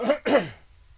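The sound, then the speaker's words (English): A fairly loud double cough: two quick, rough bursts back to back, the second slightly stronger, then silence. No one speaks. “I'm going to cough again. I do apologise.”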